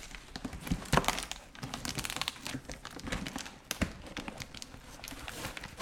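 household object, package being torn open

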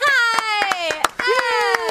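crowd, a person clapping

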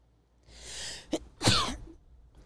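human body sound, sneeze

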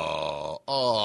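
human body sound, yawn

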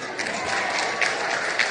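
crowd, audience applauding

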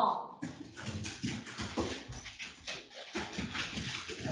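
animal, dogs barking

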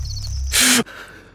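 human body sound, sharp gasp

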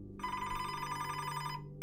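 signal or alarm, telephone ringing

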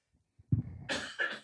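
human body sound, coughing

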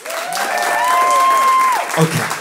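crowd, audience round of applause

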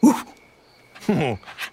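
animal, dog panting

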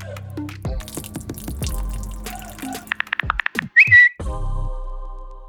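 food or drink, liquid being poured out

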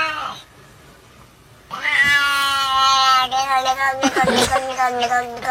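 animal, cat meowing

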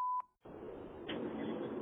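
signal or alarm, phone notification beep

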